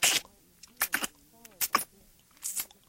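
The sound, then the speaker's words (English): A voice imitates a creature munching in a farm field at night, with a series of wet, crunchy mouth bursts, some five or six uneven chomps spread over a few seconds, fairly loud, with brief voiced hums between them. “Munching noises.”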